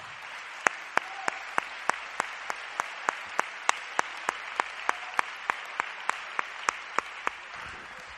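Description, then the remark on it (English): A seated audience claps hands unto the Lord in a steady, even rhythm, roughly three sharp claps per second, over a constant background hiss, with no one speaking. “And when you're seated, clap your hands unto the Lord.”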